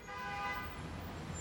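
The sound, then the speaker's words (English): A car horn blares in one long, steady honk over a rumble of traffic as the car barrels toward a man, fairly loud, with no voices. “And he is so consumed with what's happened to him that he doesn't see a car barreling toward him.”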